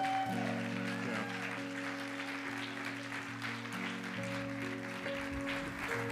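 An audience applauds, honoring the leaders who planned an event, in a dense, steady wash of clapping that holds for about six seconds, with sustained low tones humming underneath.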